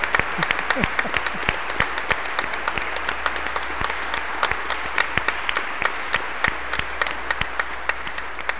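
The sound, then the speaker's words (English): A church audience applauds steadily for several seconds for the youth who read the Passion and the Lee Harper dancers, a dense patter of many hands clapping at a fairly even loudness with sharp individual claps standing out. “And for that, I think we ought to give a round of applause.”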